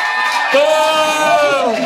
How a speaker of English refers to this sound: I promised it, we're going to do a round of applause for who won. Well, if you liked. I don't know. That's tough. That's tough. All right, first up, Winky. Thank you. Very good. Okay. If you think McGonagall should win Charlie's heart, applause.